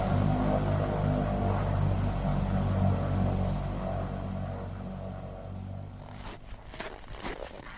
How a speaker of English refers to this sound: And this is my first time in a twin otter, which is a really quite a small plane. And we're in a plane with no wheels, which is slightly concerning. But it has got skis.